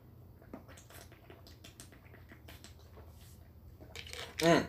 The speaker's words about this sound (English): And I'm going to take a sip of my smart water now because I've been talking a lot. I am parched. One moment.